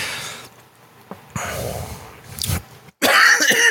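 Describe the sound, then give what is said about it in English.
A person coughs and clears their throat several times, rough bursts separated by brief pauses and breaths, ending in a louder, harsher hacking fit. No speech. “Gandalf residual coughs.”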